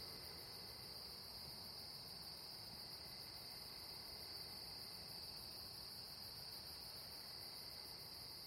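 A dense, unbroken chorus of night insects chirping, high-pitched and steady throughout with a fast shimmering pulse, over a low background hiss and no voices.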